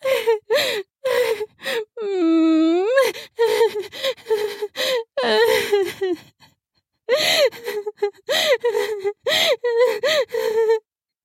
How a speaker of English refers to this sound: I hum and whimper almost to the rhythm of a sob.